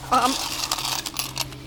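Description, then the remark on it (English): Coins clink and jingle as they're poured into a heavy bag: a bright metallic ring at the start, then a quick jumble of rattling, shifting clinks, moderately loud. “Here's all the coins in a bag. It's heavy, but, well, that's all the money.”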